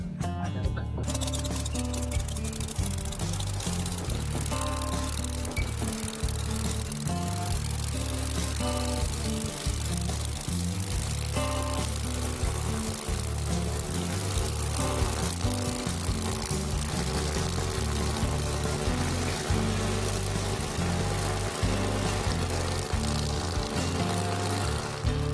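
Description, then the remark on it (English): A Dragonfly airboat engine on a river roars loudly and without a break, its deep propeller drone throbbing low with a broad rushing hiss on top, the pitch rising and dipping slightly as the throttle shifts. “I really love this dragonfly airboat.”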